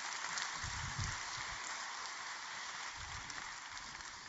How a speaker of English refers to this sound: How about a round of applause for Prelate?